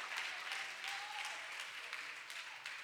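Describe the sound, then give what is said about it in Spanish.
Sustained applause for the Lord during a church sermon, a dense steady patter of many hands clapping with brief louder bursts, continuing evenly throughout with no clear speech over it. “Fuerte ese aplauso para el Señor, hermano.”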